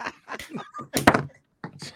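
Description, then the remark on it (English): A single solid thunk of a phone being dropped onto a hard surface lands sharply in the middle of some muffled talking and briefly stands out loud. “He dropped his phone.”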